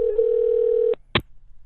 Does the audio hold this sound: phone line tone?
yes